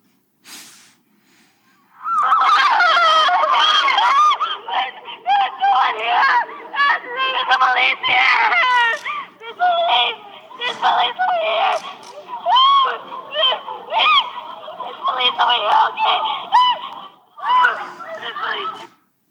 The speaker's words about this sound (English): Now, I have to warn you, this is extremely difficult to listen to. So take a minute, brace yourself, and okay, here it is. This is a shrill screaming of kids trying to get out while their classmates are being murdered.